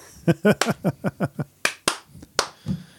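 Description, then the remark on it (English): A voice talks briefly, then three sharp, crisp hand claps ring out in quick succession, one clap per win for the Kings' three-game win streak. The last clap comes after a slightly longer pause, with a little vocal sound trailing after. “No, only 3 claps.”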